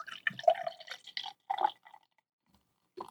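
Blood orange blonde beer glugs from a 32-ounce crowler into a glass in a few uneven bursts, fairly clear, with dripping splashes, then a pause and a final short pour near the end; about six ounces are poured.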